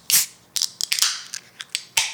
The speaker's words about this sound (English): All right, let's grab the can and grab the glass and let's open her up.